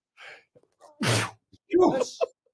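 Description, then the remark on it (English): A loud sneeze: a quick sharp inhale followed by a burst of explosive noise, then a second breathy vocal burst, like a follow-up sneeze or gasp. “You can call them if I don't sneeze again.”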